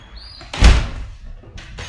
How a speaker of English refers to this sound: If your significant other just get up out the bed, this is all you hear. The front door. 3 a.m.